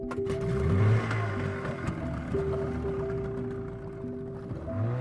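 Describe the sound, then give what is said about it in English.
A fishing boat's motor drones steadily as it putts another 6 miles out to sea off Devon in the south of England, a continuous low hum with a rough churning undertone, holding at an even loudness throughout with no voices. “The boat putted another 6 miles out and dropped anchor again, in an area which was less fished.”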